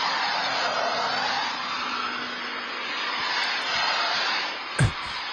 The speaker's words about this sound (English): Security footage of my boss's daughter's car getting hit. This is, and the end of this is so funny.